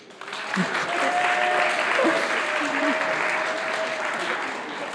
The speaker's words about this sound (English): Okay, so round of applause.